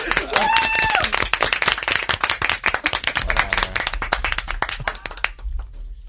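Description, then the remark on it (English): A group claps steadily for about five seconds, many sharp overlapping hand claps forming dense applause, with a few voices and whistles mixed in before it stops abruptly. “You keep clapping right now.”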